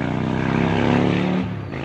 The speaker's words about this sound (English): Yes, I couldn't agree with the sound guy more on this motorcycle going by.